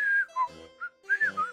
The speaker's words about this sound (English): I think he's whistling as he does this, like...